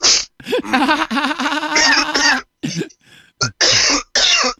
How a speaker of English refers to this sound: And that cough right there, still not me.